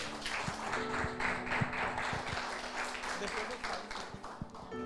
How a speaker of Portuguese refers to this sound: Aleluia! Aplauda o Senhor Jesus.